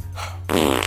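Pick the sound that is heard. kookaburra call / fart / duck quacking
fart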